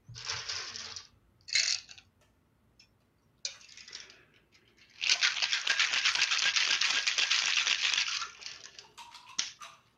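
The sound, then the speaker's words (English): A cocktail shaker full of ice rattles as a drink is mixed, first in a few short jolts, then in a steady, vigorous shake lasting several seconds before stopping abruptly. No one speaks. “Then shake this thing up, and we're good to go.”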